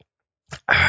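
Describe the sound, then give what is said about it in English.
A quick sip from a drink: a soft mouth sound, then a short, loud, airy slurp that runs to the end. No one speaks. “Let's take a sip before we consume.”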